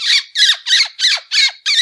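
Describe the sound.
Six sharp, high-pitched squeaks in a steady rapid rhythm, a lip squeak predator call mimicking a distressed rodent, loud and alone with no talking.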